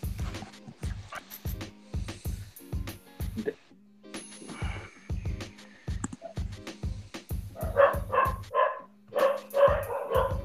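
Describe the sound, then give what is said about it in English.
A dog barks repeatedly in quick bursts, with some yips mixed in, over a rhythmic low thumping in the background, heard over a caller's line. “Yeah, Dre, we can hear you. And the dog.”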